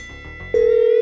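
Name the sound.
phone call ringing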